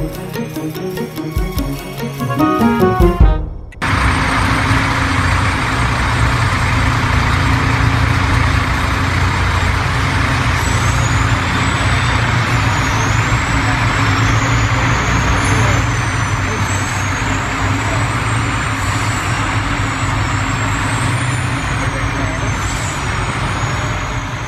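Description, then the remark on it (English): A military convoy of heavy trucks transporting bodies out of Bergamo in northern Italy rolls past, a steady loud engine rumble with thin high squeals over it, after a short burst of a different tonal sound at the start. “Sound of a military convoy transporting bodies in trucks out of Bergamo in northern Italy because its crematorium had been overwhelmed.”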